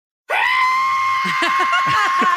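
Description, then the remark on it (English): A sustained, piercing high-pitched vocal screech with a whistle-like tone, held steady for about two seconds, loud, with faint chattering sounds underneath. “Saw that between a screech and a whistle.”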